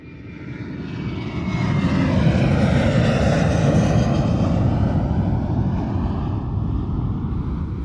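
A loud airplane roars overhead at Sky Plaza Road in Hong Kong, its engine noise swelling over the first two seconds and holding steady as a broad, rumbling drone with shifting tones, no voices present.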